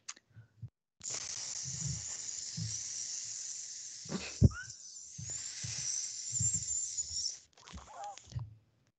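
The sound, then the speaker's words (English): A voice imitates a snake with a long, sustained hiss lasting several seconds, broken briefly by a sharp click, then a shorter hiss at the end, fairly loud. “Okay, sexy snake. Ready?”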